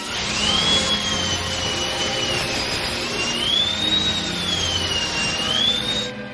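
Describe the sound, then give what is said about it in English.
A dentist drill whirs steadily for several seconds as part of a wrestler's entrance theme, its high-pitched whine slowly sliding up and down in pitch over a loud, constant rushing hiss, with no voices. “The dentist drill. There is nothing worse, and I know that it was the gimmick, but there's nothing worse than that dentist drill hitting.”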